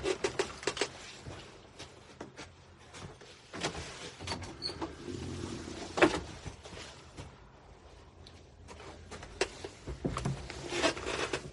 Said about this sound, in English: One second, I'm just going to open my door for a little fresh air.